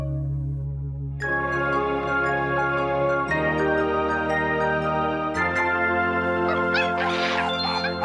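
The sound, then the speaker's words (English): An alarm sound effect signalling a special announcement: a loud, sustained, buzzy electronic tone that jumps to a new pitch in three abrupt steps, with a short hissy burst near the end. “sound the alarm!”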